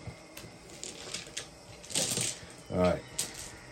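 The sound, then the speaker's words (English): Dice clatter and tumble across a table during a game in a few quick, light clicking bursts, with one brief rattling flurry in the middle, while a muffled voice murmurs. “Can I roll? Wait up. You got your dice you're using?”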